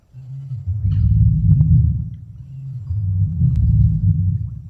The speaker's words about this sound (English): The T-Rex wouldn't have the need to open its mouth, thanks to closed-mouth vocalization. This is common amongst birds and reptiles, and the noise would have travelled through vibrations.